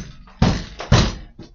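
Two heavy, booming thuds against a door land about half a second apart, followed by a softer third knock, with no one talking.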